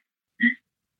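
A single quick sneeze, a short sharp burst that stands alone in an otherwise quiet moment, moderately loud.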